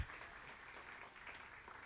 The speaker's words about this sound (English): Give my beautiful wife a big round of applause. Amen.